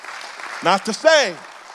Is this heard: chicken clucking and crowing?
no